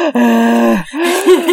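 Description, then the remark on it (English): A person breathes in an exaggerated, deep way, with a long voiced gasping inhale followed by a shorter, wavering breath out. It is loud, with no talking. “God, now I'm breathing too much.”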